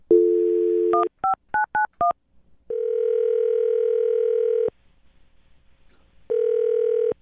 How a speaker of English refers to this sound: All right, I'm going to dial the phone right now, get him on the phone, okay? Okay. Here we go.